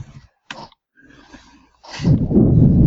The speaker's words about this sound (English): You're breathing directly into your microphone.